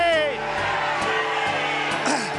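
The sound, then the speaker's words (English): A large church audience jumps up and down, waves their arms and screams "Send me!" together in a loud, continuous roar of many voices, with a few dull thuds underneath. “Jump up and down, wave your arms, scream it.”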